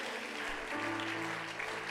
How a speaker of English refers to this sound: Why don't we do that to the Lord? Would you clap your hands and give him praise all across this room?